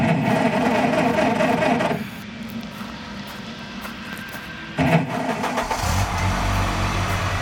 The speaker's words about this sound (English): And I fired up the car.